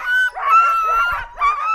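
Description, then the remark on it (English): A pack of excited sled dogs barks and yelps in a loud, continuous chorus before a training run. They are hooked up to the line, leaping in the air and banging on their harnesses. Their high, overlapping calls come with only brief breaks and no talking. “The dogs get so excited before their runs. They're hooked up to the guy line, leaping in the air, banging on their harness.”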